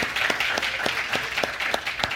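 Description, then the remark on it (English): An in-person crowd applauds the center's longtime online audience, with a dense wash of many hands clapping steadily and a few sharper, louder claps standing out at a regular beat. No one speaks. “And so would you mind doing an applause?”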